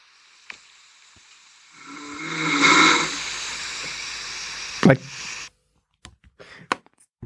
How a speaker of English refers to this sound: He's like, well, I know I snore. But he's like, just wake me up.